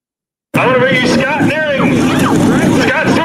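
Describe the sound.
A turbocharged pulling tractor engine roars loud, a steady, powerful drone that starts abruptly and holds for several seconds, with a voice faintly audible over the noise.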